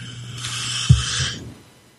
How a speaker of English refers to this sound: Had to cough there.